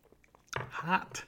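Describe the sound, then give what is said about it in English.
A quick slurping sip of hot coffee, a brief wet mouth sound with a soft airy intake, after a moment of near silence. “Let's take a sip here and then we will dig in.”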